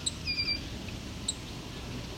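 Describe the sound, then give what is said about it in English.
A song sparrow gives a few short, sharp tick calls, a quick cluster of high notes followed by a single tick moments later, over faint low background rumble; the calls are aimed at a person it takes to be in its territory. “short call means this song sparrow thinks I'm in his territory.”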